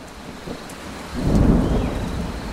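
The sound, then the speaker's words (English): Steady heavy rain pours down in a rainforest in South America while a deep rumble of thunder swells in around the middle and lingers, filling the low end before easing slightly. No voices are heard. “Wow, listen to all that rain come down.”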